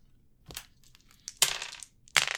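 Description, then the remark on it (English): Players rolling two ten-sided dice (2d10) in a tabletop role-playing game, the dice clattering across a table in three separate bursts: a quick rattle, then a longer tumbling clatter, then another sharp rattle at the end. No one speaks. “Everybody roll 2d10.”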